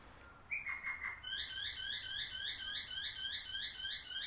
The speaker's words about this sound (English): See, it's one thing to talk about bird song. Yeah, hey, birds, they sing. It's another one to know what that bird's talking about.